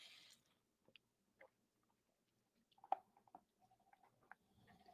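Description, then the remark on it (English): Soft mouth sounds of someone sipping coffee: small wet slurps and swallows, with a slightly louder sip in the middle, and no talking. “So as we wait for eight people, we'll take a sip of coffee.”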